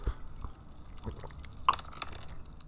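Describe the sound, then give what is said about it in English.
Quiet, wet sipping of hot homemade coffee in a shed on a frosty, still-dark winter morning in Australia: a few soft slurps and small liquid clicks spread over a couple of seconds, with one sharper sip near the end and no talking. “And just before I hit that little skill determination button, I'm gonna lean over and have a little sip of this coffee I've made myself on this frosty Australian morning.”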